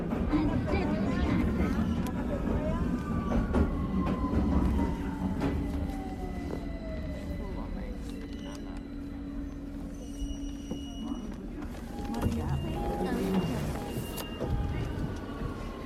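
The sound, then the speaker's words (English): A train rolls into a station with a steady low rumble and a long whining tone sliding downward as it slows, while a crowd murmurs in the background. “Finally, you can see the train arriving.”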